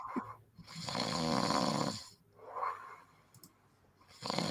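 A man snoring loudly up close, with long rattling inhales and throaty rumbles repeating in a slow rhythm, separated by brief quiet breaths.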